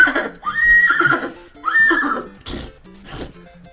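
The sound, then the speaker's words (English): A man imitates a horse whinny for a song: two loud, wavering high-pitched whinnies followed by a couple of breathy, snorting blows. “Have horse if it was like a bad horse sound, like it wouldn't have a place in the song, but the fact that he can do such it's a so good horse noise, it's like it transcends how silly”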